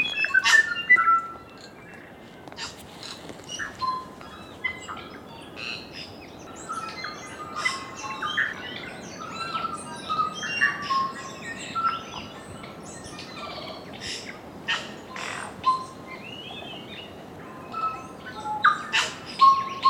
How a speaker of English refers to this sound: Although it's rare to see a kiwi or hear its call, what you will hear on Stewart and Olva Islands are tuis, kakas, bellbirds, parakeets, and the other species of birds that make the New Zealand soundscape so extraordinary.